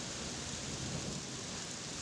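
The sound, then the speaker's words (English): Steady rain falls continuously in Prague, a dense, even hiss of drops with a soft low rumble underneath, moderately loud and unbroken throughout, with no voices. “It's a Thursday, and it's raining in Prague.”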